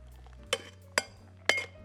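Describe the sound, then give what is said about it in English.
Metal cocktail shaker tins, the big tin tapped to fit snugly and then shaken while making a cocktail for two, giving three sharp, bright clanks about half a second apart, each with a short ringing tail, over a low steady hum with no talking. “Put our big tin, give it a nice little tap, make sure it's nice and snug. Shake away.”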